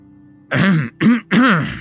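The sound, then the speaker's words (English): An exaggerated, theatrical cough in three loud, voiced bursts by a man straightening his posture, alone, with no talking around it. “Charlie excessively coughed, straightening his posture.”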